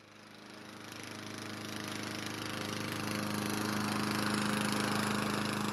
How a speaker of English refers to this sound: Night fell quicker than I could finish my yard work. I spent the last 5 minutes mowing in the gloom of dusk.